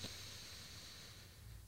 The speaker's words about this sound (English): Relax your shoulders away from your ears, out your mouth. One more breath in your nose,